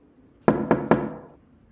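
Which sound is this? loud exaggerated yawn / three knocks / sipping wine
three knocks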